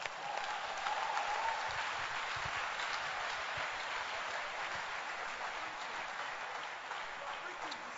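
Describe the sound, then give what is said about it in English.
Steady, dense applause from a church audience clapping for the sisters, a continuous wash of many hands clapping at even loudness for about eight seconds, with a faint voice briefly audible early on. “Clap your hands for the sisters.”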